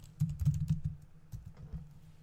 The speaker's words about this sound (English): How many NFL players are there? I'm typing, you can tell, right?